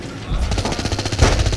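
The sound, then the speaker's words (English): A rapid stream of automatic gunfire: loud, sharp cracks fired in a fast, steady rhythm for over a second, with a heavier booming hit partway through. “Open fire!”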